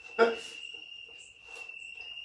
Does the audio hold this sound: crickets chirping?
yes